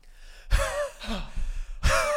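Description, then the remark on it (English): A man imitates heavy panting, forcing out several loud, harsh breaths in an uneven rhythm, each a noisy rasping gasp. “Yeah, he's breathing mad he's beating hard.”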